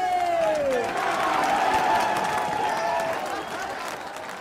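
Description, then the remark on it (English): A large stadium crowd at a game cheers and roars in a steady, loud wash of noise, with scattered clapping, shouts and a rising whistle near the start, holding strong throughout, reacting to a player saying he is not leaving the game. “And on top of that, the crowd cheering when they heard him saying, I'm not fucking leaving,”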